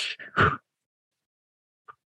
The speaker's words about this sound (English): And it was where to give you an idea, it's not just like deep breathing. It's like two sharp breaths in and then you blow it out.